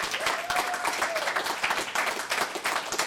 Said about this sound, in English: All right, well, thank you all for coming out. Can we have one more round of applause for the readers?